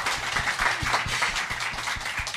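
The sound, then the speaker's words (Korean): A crowd claps steadily, a dense wash of many hands with distinct individual claps popping out, sustained evenly throughout with no voices. “네, 여러분 박수 한번 부탁드립니다.”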